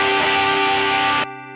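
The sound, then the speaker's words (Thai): A single sustained, heavily driven electric guitar chord played through a boost distortion pedal rings out loud, gritty and saturated, then abruptly thins to a quieter, cleaner tail for the last moments. “เนี่ยเสียงบูท”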